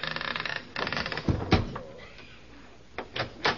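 A closet door is opened and shut, with a couple of solid wooden thumps and a short creak, followed by a few lighter clicks and bumps against a low background hiss.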